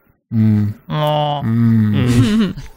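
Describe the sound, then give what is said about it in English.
A voice imitates heavy breathing through a mask: four drawn-out, groaning breaths in a steady rhythm, loud, with no other talking. “He's in deep breathing.”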